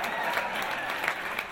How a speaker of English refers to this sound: Round of applause for God. Come on, put your drinks down and clap.